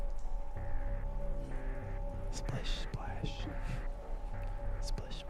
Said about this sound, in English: You hear splashing coming. You hear some kind of like talking, murmuring. Murmur. The splashing starts coming down the sewer line towards you.